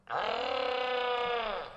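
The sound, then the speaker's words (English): A single loud, guttural primal scream held for about a second and a half, harsh and strained with a gradually falling pitch, trailing off with a hint of reverb. “And after I got done with my guttural primal screams.”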